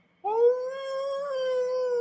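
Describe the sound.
A person imitates a dog's howl: a single sustained, tonal howl that starts abruptly, holds a steady pitch with a slight upward lift midway, and continues fairly loud until the end.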